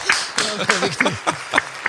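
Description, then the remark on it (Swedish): A handful of sharp claps at a steady, unhurried pace, about three per second, mixed with voices talking over them. “Ja, det måste jag applåd till.”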